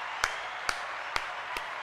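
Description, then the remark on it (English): Four sharp hand claps at a slow, roughly even pace, a sparse bit of applause standing out modestly above a steady background hiss, with no talking. “Clap, we get applause. There it is.”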